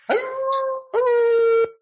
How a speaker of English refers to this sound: The dogs are going to be barking that day.